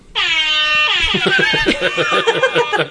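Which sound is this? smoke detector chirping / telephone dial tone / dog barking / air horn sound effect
air horn sound effect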